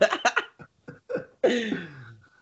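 A person coughs in a quick series of short, close-up bursts, followed by one longer, rougher cough that trails off with a voiced, falling tone.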